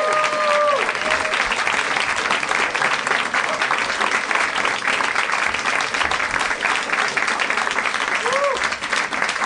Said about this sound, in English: Thank you. Thank you very much. That was lovely applause, and it made me feel 8 times more self-estimatious.